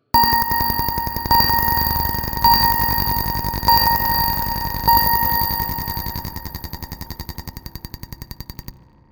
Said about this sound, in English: The perimeter lighting on the cargo ramp begins to flash, and a series of beeps are heard.